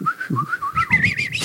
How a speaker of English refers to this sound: I can't do it. I always try to whistle like the old man in Heroes.